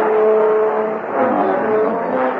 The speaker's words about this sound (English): I gotta step on it. Come on, car. Let's do our thing.